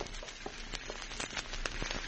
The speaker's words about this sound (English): Santo, this place is on fire.